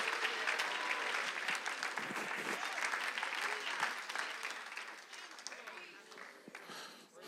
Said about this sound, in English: Oh, come on and clap your hands a little bit louder for the King. Come on and lift your voices a little bit louder for the King.